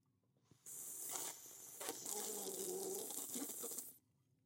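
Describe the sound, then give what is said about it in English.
Passion fruit LaCroix sparkling water fizzing: a dense, crackling hiss of tiny bubbles starts abruptly, holds steady for about three seconds, then stops sharply. No one speaks. “Can you hear the bubble or is the compressor?”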